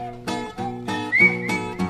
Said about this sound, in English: You know it's a party when you hear that sound. Oh, by the way, man, you left your slide whistle here last night.